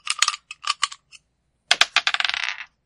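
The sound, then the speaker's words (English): Dice clatter across a hard surface: a few sharp, bright clicks, a short pause, then a denser rattling burst that tumbles and settles. No one speaks. The dice are rolled in a game to see how well the character Ashley does. “Let me roll to see how well Ashley does.”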